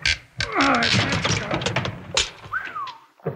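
Wild Bill Hickok and Jingles pry up a trap door in the loading platform of Ace Batty's store after dark: strained wooden creaks and squeals mixed with sharp thunks and cracks, ending in a rising, then falling creak and a final knock. No one speaks.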